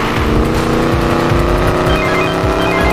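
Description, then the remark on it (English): The powerful engine of a stolen Regera supercar, pursued by police, roars steadily and loudly, its pitch climbing as it accelerates hard, with a dense rumbling low end and no voices over it. “Control, we're pursuing the stolen Regera, code 3.”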